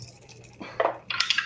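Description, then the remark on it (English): Two dice, rolled for a perception skill check, clatter across a hard surface in two quick bursts of sharp, bright clicks and rattles, fairly loud, with no voices over them; the roll gives a six. “I'll just make it like base, brains. Just two dice.”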